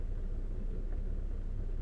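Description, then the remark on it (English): Thunder rumbles low and steady for a couple of seconds while it rains outside, a deep continuous roll without sharp cracks, with no voices over it. “And I hope that's why it's thundering like this, because you upset because I'm fucking upset.”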